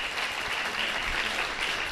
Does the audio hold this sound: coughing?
no